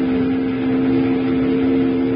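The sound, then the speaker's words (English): A steamboat whistle, sounded by pulling its whistle cord, blows one long, steady blast, a loud, low chord-like tone that holds without a break over a rumbling mechanical background, with no voices. “Jingles, grab that whistle cord and pull it.”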